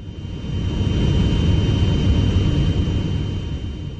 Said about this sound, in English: This week, thanks to one of our listeners, Gemma Hammond, we've rolled the dice and found ourselves in an aeroplane.